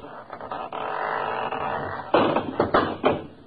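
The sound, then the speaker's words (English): A house door falls off its hinges as it is opened: a drawn-out scraping rattle, then a burst of loud wooden bangs and clatters as it crashes down and bounces to rest. No one speaks. “That door need a little tightening up, too. Fell right off.”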